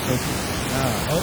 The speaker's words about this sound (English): There was some kind of like weird static in the background.